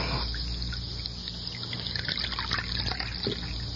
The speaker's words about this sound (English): Let me pour you some coffee.